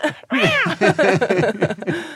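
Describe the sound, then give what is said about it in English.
A person imitates a cat, giving a quick run of loud meows with rising and falling pitch and hardly a pause between them. “Somebody get that cat out of here.”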